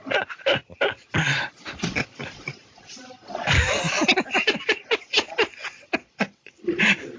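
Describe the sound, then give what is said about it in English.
A pet cat meows loudly and insistently, a run of sharp, pitched cries and longer drawn-out wails that keep coming in quick bursts for several seconds. “Shut the hell up, cat.”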